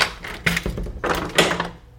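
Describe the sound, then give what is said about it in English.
A door being opened: a quick series of clunks and rattling clicks from the handle and latch, spread over a couple of seconds, with no one talking. “So before he opened the door, he wasn't totally sure what we were going to find on the other side.”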